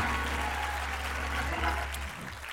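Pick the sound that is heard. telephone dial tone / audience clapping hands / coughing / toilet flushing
audience clapping hands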